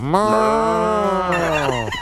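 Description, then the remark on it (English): A caller to the Panthers postgame show on 1380 AM imitates a cow with one long, drawn-out moo, loud, its pitch swelling and then sagging before it trails off. No other sounds accompany it. “it's Panthers postgame, here on 1380 AM, he has to just moo.”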